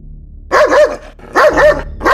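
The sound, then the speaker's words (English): A dog barks angrily in three loud, harsh bursts spaced about a second apart, each bark wavering and drawn out, with no one talking. “I heard a dog bark angrily.”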